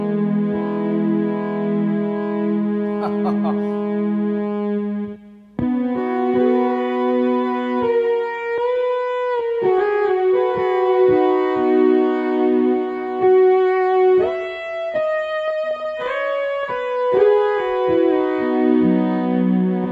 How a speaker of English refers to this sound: So that's kind of like the Mini Moog setting, and it's got like the glissando effects that you can dial in and out of it. But each one of these 9 settings on the Synth 9 has different characteristics.